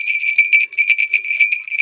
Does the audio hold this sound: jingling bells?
yes